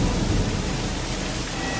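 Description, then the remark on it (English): Heavy rain pours steadily while a deep rumble of thunder rolls underneath, loud, a continuous stormy roar with no voices. “What a terrifying storm!”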